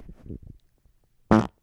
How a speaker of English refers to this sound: Oh, here comes another fart.